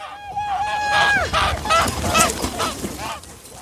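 Several geese, moon geese raised by German artist Agnes Meyer Brandes, honk in a noisy, overlapping chorus, their nasal calls rising and falling over a few seconds with no pause.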